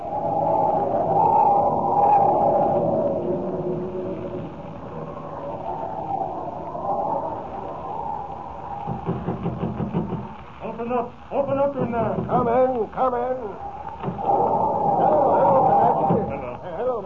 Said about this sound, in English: I've never seen such a blizzard, Jerry. It's a real howler.